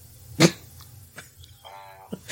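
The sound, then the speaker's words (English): A brief buzzy electronic tone from a trivia game buzzer, about half a second long with a rasping harmonic edge, follows a sharp burst and a few soft clicks, and ends with another short thump. “Oh, you guys both picked out buzzer sounds.”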